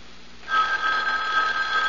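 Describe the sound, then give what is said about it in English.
A telephone bell starts ringing after a brief quiet moment, a steady, continuous trill that sounds clear, with no voices over it. “aren't you going to answer it? Answer? The phone.”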